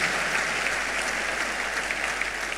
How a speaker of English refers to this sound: Somebody clap for Jesus.